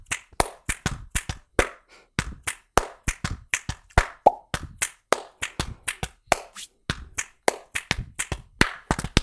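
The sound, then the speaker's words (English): A steady, rhythmic pattern of sharp percussive body sounds, alternating hits on the chest, finger snaps and claps in a repeating hit, snap, clap groove, loud and crisp with no talking. “This is what it sounds like if you put the first and the second part together. You got hit, snap, clap.”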